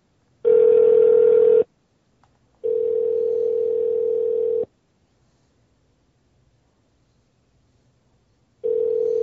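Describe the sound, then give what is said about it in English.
A telephone ringback tone sounds while a call waits to be answered: steady, fairly loud electronic bursts of about one to two seconds, separated by pauses of silence, repeating three times. “You can't take freaking 30 seconds to answer your phone.”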